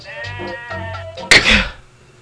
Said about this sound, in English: Why is the sheep so faint in the background? Because it was on a radio. It was on the preset.